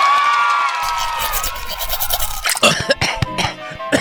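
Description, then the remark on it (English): Scratchy toothbrush strokes scrub back and forth in quick, uneven bursts as someone brushes their teeth, coming in after a sustained, ringing tonal sound fades out. “Ugh, be careful. Don't swallow your toothbrush.”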